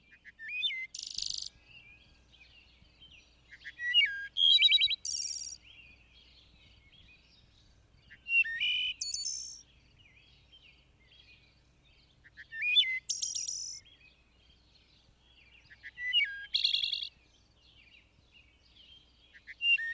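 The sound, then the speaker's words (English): Thrushes sing in repeated bright, high phrases, each burst of notes followed by a short pause, recurring about every four seconds over a quiet, faintly humming background. No one speaks. “The thrushes all have come, and I sit down upon the first rock, with hands full of pink azalea to listen.”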